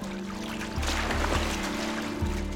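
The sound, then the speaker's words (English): A small boat sloshes and rocks in the water as men try to flip it over, with steady splashing and a low hum, plus a couple of heavier surges as the hull tips. No voices. “No matter how hard the men tried, they couldn't flip the boat.”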